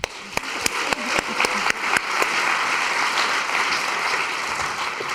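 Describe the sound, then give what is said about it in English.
Applause from an audience for the first panel of a session opens with a few scattered, sharp claps and quickly swells into steady, dense clapping that holds at an even level until the end. “And so, without further ado, I'd like you to give a big round of applause to our first panel.”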